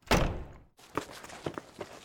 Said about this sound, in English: Where did that explosion come from? The infirmary.